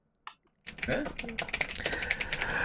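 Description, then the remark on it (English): Rapid typing on a computer keyboard, a steady clatter of many keystrokes that starts abruptly after a brief quiet moment and continues without pause, with a faint voice murmuring underneath. “I'm typing it out so I could”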